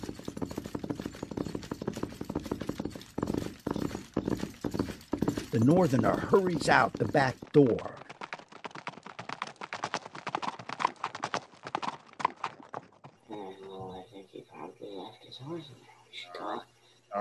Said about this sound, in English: Suddenly, the galloping of horses is heard in the distance. The northerner starts, then rushes to the nearest window. For a moment, the sound ceases. Then it begins again, growing gradually louder and louder.